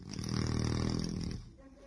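A man snores once, a long, loud, rumbling rattle lasting over a second before trailing off into quiet breathing.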